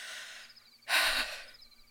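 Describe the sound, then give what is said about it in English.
A single loud, breathy gasp bursts in, a sharp rush of air lasting about half a second, surrounded by quieter hissing breath before and after. “It looks like you're heaving. Are you having trouble breathing?”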